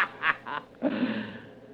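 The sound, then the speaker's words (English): A bird gives three quick, nasal squawking calls, then a longer drawn-out squawk. The calls are fairly loud, with no talking. “Stop chirping at me, or I'll pinch your head off and let you bleed.”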